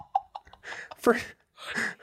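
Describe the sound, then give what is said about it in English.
Jenna Marbles's dog breathes right into a microphone: a few quick sniffs, then loud, raspy huffs and snuffling breaths in uneven bursts, with no talking. “Starting off the show this week, I have my dog breathing into the mic.”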